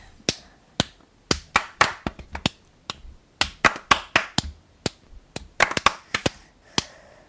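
Sharp hand claps in a lively, syncopated rhythm, clapped to start a group rhythm, about two dozen crisp hits with some quick doubled beats and brief pauses, with no talking over them.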